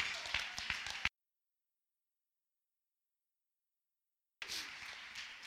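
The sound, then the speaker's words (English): A crowd claps their hands in a steady, dense patter, broken by a sudden stretch of total silence of about three seconds before the clapping resumes just as loudly. “I wish somebody else would jump on your feet and clap your hands and say, goodness and mercy.”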